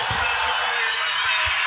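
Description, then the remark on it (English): An arena crowd at a fight cheers as the fighter Cowboy retires, leaving his gloves in the middle of the canvas, a continuous, dense roar that holds a steady level for the whole moment, with a few dull low thumps underneath. “It's just crowd noise.”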